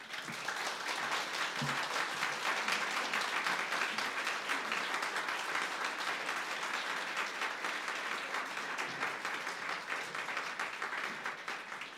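Sustained audience applause for a speaker at a science talk evening in Western Australia, a dense steady patter of many hands clapping at an even loudness for about twelve seconds, with no voices over it.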